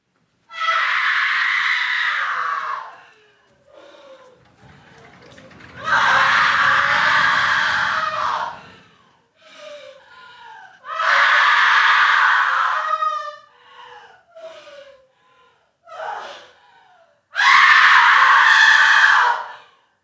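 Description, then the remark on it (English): In a scene from a Bergman film, a woman wails in grief near a man's body lying between doors: four long, loud, anguished cries separated by shorter sobbing gasps and whimpers, her voice strained and rising in pitch, with no words spoken. “She's just wailing.”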